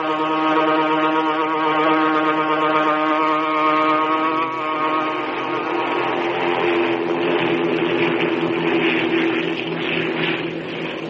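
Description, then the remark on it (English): Aboard an eastbound transport plane, a steady, loud propeller-engine drone with strong low harmonic tones holds constant for about eleven seconds, shifting slightly in pitch midway, with no voices. “Aboard the eastbound transport plane.”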